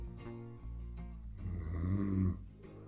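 A single person snores in a deep, rumbling breath, the rough low rasp swelling and then fading out, close by and fairly quiet, with no talking.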